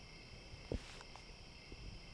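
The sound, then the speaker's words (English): Insects chirp steadily on a summer night, a faint, continuous high-pitched drone that never lets up, broken once by a soft low thump early on. No one speaks. “And I fucking don't even like insects.”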